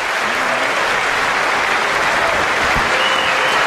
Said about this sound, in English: Mostly women in Congress raising their hands, clapping.